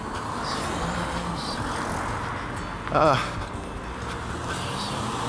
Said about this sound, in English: So I just gotta look out for traffic here for a moment, trying to cross the road.